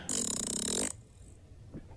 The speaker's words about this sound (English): There's still plenty more farts we got to get through.